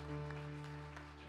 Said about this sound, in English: One more time. Can we just give a clap offering unto the Lord for his goodness? Amen.